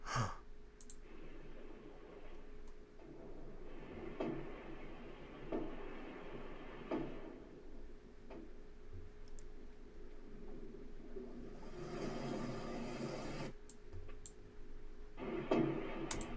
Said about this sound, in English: Oh my gosh, that is creepy. Oh, yeah. So they said that, I think last night they heard knocking in 30-minute intervals on... Knocking in 30-minute intervals on sonar. But I guess that doesn't help them find where it's at.